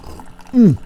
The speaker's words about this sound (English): Okay, let's have a sip of the coffee.